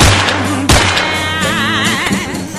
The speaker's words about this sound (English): My headphones fell. That's fine.